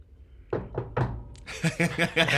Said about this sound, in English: Suddenly there is a knock at the door.